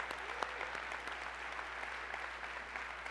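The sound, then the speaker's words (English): A City Hope church crowd claps in steady applause on a Sunday morning for Mobile, Bay Minette, Foley, Fountain Correctional, Holman Correctional and everybody watching online, a dense wash of overlapping hand claps that holds at an even level throughout, with a few sharper individual claps standing out. “can we give Mobile, Bay Minette, Foley, Fountain Correctional, Holman Correctional, and everybody watching online a huge round of applause this morning?”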